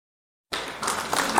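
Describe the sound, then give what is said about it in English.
After a brief silence, a crowd breaks into a burst of applause, a dense wash of many hands clapping at once that holds steady for about a second. “Are you ready? Clap if you're ready.”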